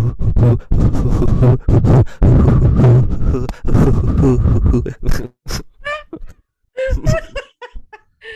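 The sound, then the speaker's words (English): A voice imitates a heartbeat with a run of low, rhythmic grunting thumps, then breaks off into bursts of laughter and snickering. “You try to do like a heartbeat.”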